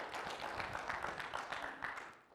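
A crowd applauds steadily, many hands clapping at once in a dense, continuous patter that sounds somewhat distant and fairly soft, holding at an even level for the whole stretch.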